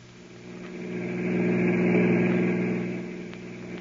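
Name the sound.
car engine driving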